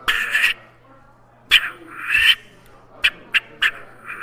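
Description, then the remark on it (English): Someone imitates a gray squirrel's bark: a couple of drawn-out, raspy calls followed by a quick run of short, sharp barks, loud, with no other talking. “Yeah, give us a real good squirrel. That's they a got rap a gray, right you know, there.”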